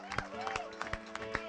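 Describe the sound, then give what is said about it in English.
An audience at Metro Praise church claps as a hand clap of praise to the Lord, in uneven, overlapping bursts of sharp slaps, with a sustained tonal hum and voices carrying underneath throughout. “And I just want us to give the Lord a hand clap of praise because he cleared it all off.”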